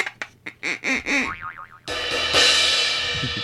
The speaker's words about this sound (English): Wait, I just heard boing. Was that you?